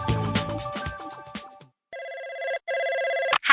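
A telephone rings in two steady, bright electronic bursts separated by a brief pause before an answering machine picks up, following a moment of busy, jumbled music-like sound; the ringing is fairly loud and sounds alone.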